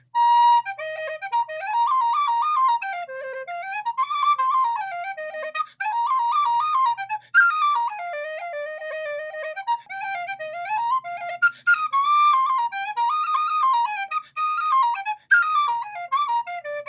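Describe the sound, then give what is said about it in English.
A tin whistle plays a lively, quick reel in the key of B flat alone, its bright high notes tumbling up and down in a steady, bouncing rhythm with brief breaths between phrases, clear. “I'll just do a quick demonstration on it. I'll just do a quick reel on it.”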